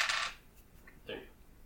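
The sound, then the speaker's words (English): Dice clatter with a sharp, bright rattle at the start, followed by a couple of softer clicks as they tumble and come to rest. No voices. “Well, I'm going to re-roll it.”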